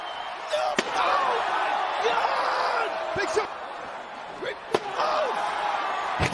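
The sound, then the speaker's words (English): A heavy crashing slam, like a wrestler driven through a table, cuts through a loud, roaring arena crowd, with a few more sharp impacts booming over the constant cheering. “And then through the table.”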